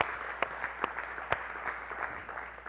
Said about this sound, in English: Can we just give one more round of applause for everybody that's worked so hard this weekend?